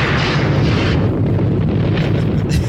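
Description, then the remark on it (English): A thunder sound effect: a loud, sustained low rumble with crackling texture that stays heavy and steady across the whole stretch, with no voices. “Thunder!”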